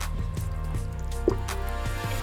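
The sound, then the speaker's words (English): Water drips and splashes lightly as a man washes his face in a bathroom, a few soft wet drops landing over a steady low background hum, fairly quiet. “He washed his face and then looked into the mirror.”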